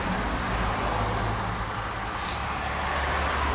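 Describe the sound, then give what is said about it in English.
A big van rumbles along a road, slowing down in traffic, its steady engine and tyre roar filling the scene with a broad, continuous wash of traffic noise and a brief hiss near the end. “Oh, there's a big one. There's a big one. Van.”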